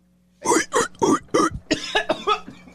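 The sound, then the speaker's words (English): A fairly loud run of coughing: four harsh, evenly spaced coughs, followed by several shorter, quicker hacks that trail off. “That was right before I was getting COVID tested. I had a cough”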